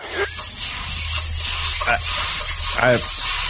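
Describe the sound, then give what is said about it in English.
A dentist's drill working in a patient's mouth gives off short, high-pitched whining squeals that come and go over a steady low rumble, with a few broader bursts and a brief vocal sound in between. “Live audio right there of me getting my mouth drilled.”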